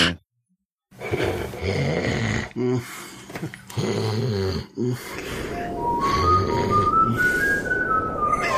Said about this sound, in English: That's me. That's what I hear. That's you doing the entire show for 3 or 4 hours or whatever it is. That's all you hear is just nose whistles and mouth noises, right?